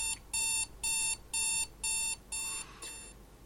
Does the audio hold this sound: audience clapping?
no